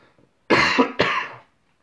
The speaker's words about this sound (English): Oh, wrong pipe. I was drinking water.